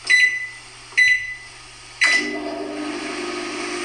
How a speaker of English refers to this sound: That is starting, well, for me, it's starting my, my washing machine. Are you serious? That's exactly the sound my washing machine makes.